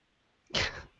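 A single short, explosive cough bursts out, a sharp breathy blast lasting about half a second, with quiet background before it and no talking.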